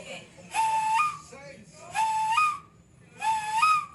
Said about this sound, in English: He demonstrated the use of an indigenous blow dart and even explained the complex Bribri hunting strategy, which involves a language of fluttering whistle calls.